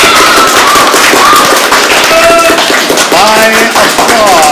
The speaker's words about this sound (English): By applause, how many of you are rooting for Jesuit? By applause, how many of you are rooting for Christian Brothers?